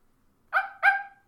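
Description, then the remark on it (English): A voice imitates a puppy with two quick, high-pitched yapping barks in close succession, loud, followed by silence. “So she's like a little puppy.”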